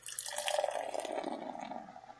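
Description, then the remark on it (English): A 4% ABV pale ale poured steadily from a can into a glass, a continuous gurgling splash with fizzy hiss that lasts a couple of seconds with no voices. “And the pour.”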